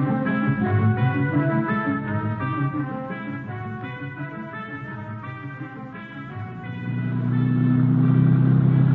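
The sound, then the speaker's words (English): A car engine idles with a steady low rumble, then grows louder and revs up toward the end as the vehicle pulls away; no one speaks. “Merslag and I head out in his auto.”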